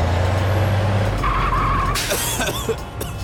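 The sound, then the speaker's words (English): A toy ambulance named Amber rumbles in loud, arriving at a traffic jam in the mall, then its tires let out a sharp, squealing skid as it screeches to a stop. No one speaks. “Look, Amber has arrived.”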